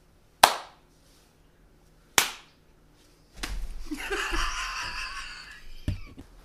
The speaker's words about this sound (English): You're talking and then when you clap your hands, now you gotta clap without talking.